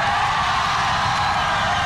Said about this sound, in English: And yeah, so there's, as you said, as soon as anything in regards to Sydney 2000 games, boom, lots of cheering. And foot stomping. And plenty of foot stomping, yeah.